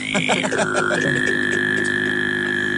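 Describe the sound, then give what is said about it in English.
A voice does Tuvan throat singing of the beat from the beginning of a song, holding a low droning fundamental under a bright whistling overtone that glides down and then holds steady, with pulsing throaty accents early on. “Could you tuban throat just sing them out? Yeah, that beat at the beginning.”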